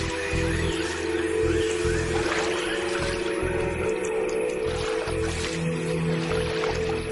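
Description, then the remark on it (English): A basilisk lizard runs across the surface of water, its feet driven down hard and fast, making a rapid run of light pattering splashes, small slaps and squishy sloshes over a steady wet background, fairly loud with no talking. “This skitter across the surface of the water earns it precious seconds and the nickname Jesus Christ Lizard.”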